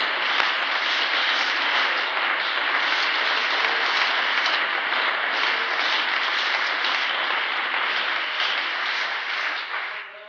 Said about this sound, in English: To build the kingdom of God, everybody give the Lord a hand clap of praise.